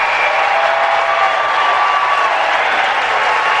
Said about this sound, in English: Businessman Donald Trump. Businessman Donald Trump. Listen, the crowd goes crazy.